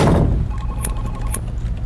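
Keys rattle in a door lock, giving two sharp, bright metallic clinks about half a second apart over a low, steady rumble, with no voices.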